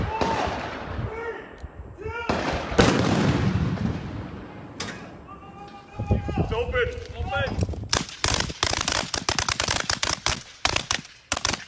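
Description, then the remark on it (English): Heavy artillery booms and explosions rumble from a military training complex in the town of Hoffman, North Carolina, then give way to a rapid barrage of sharp, loud blasts in quick succession, with faint voices briefly audible beneath the noise. “In the town of Hoffman, North Carolina, residents are kept up at night with the sound of artillery fire and explosions as a result of the military training complex that moved into their neighborhood.”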